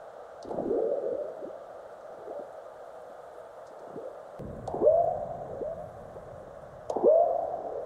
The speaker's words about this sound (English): Frog-like burps you could hear are earthquakes, large ones followed by the chirps of aftershocks.